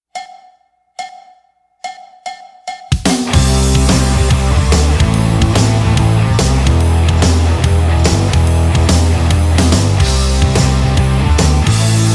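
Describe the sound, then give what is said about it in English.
A recorded song, sent in as a YouTube link, opens with a few sparse, ringing percussive hits, then at about three seconds a full band kicks in loudly with heavy bass, steady drums and dense harmonic layers, holding a constant driving groove. “the fact that it's a YouTube link, et cetera, I have some suspicions about this, but we'll just let the music play, and then maybe I can form a more well-informed opinion.”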